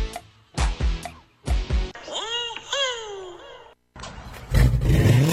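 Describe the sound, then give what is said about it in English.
A car engine fitted with a Carnage custom exhaust revs hard: a few sharp bursts, then rising and falling revs with a throaty whine, ending in a deep rumble. “Man, that car sounds good. Oh, you know, it's just that Carnage exhaust I got at Troy's Muffler.”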